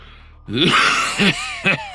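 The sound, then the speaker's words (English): Three harsh, raspy coughs from one man, a long strained one followed by two shorter hacking bursts, loud with no other sounds. “coughed violently”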